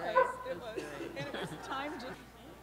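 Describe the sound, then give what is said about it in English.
A dog gives a brief, sharp bark near the start, heard faintly against a busy background of people talking and murmuring. “What was that? It was a dog. It sounded like a dog.”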